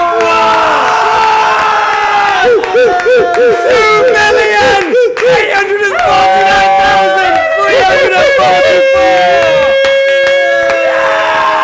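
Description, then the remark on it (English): A loud crowd cheers wildly throughout, with overlapping shouts, whoops and high-pitched yells rising and wavering in a dense, continuous roar. “And the crowd goes wild.”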